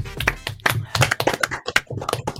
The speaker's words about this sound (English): 1 year anniversary, so clap it up to us.